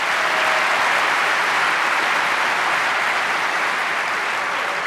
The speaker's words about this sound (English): Let's have a round of applause for sponsors.